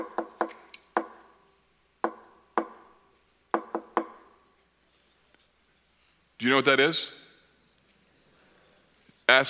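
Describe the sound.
SOS tapped out in Morse code: about nine sharp knocks in three uneven groups, crisp and fairly loud, followed by a short spoken question.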